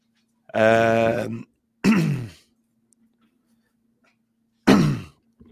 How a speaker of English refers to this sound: Oh, he's off. Dog's chewing on something, choking on something.